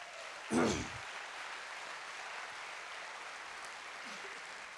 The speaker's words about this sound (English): Can somebody give Jesus Christ a big old hand clap?